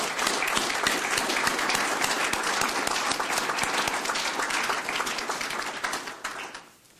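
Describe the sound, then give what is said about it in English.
A crowd applauds steadily with dense, overlapping claps that stay loud and even for several seconds, then taper off quickly at the end, at a swearing-in ceremony. “Give yourselves a round of applause. You made it.”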